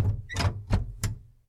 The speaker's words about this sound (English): Please, close the windows and I will close the door.